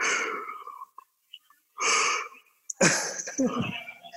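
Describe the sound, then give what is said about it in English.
A drawn-out yawn: breathy airy inhales and exhales with brief pauses, ending in a longer, strained voiced stretch that squeaks and wavers before fading. “And a little, like, a little entity just escaped from the yawn, like, you know, like a little, like a little lawn gnome that's been hiding in there, like, just like, and you fucking escape with your yawn.”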